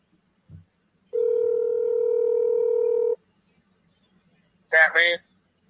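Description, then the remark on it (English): A single long ring of an outgoing phone call, a steady electronic tone lasting about two seconds, followed after a pause by a brief voice on the line. “Let me call this one. Let's see if he answers.”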